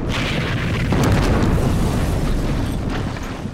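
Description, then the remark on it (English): A loud explosion at a church used as a field hospital during a Luftwaffe aerial bombardment roars with deep rumbling and crackling debris, swelling about a second in and sustaining for several seconds before easing slightly. No voices are heard. “What was it like to play that scene? Running towards the church, the explosion.”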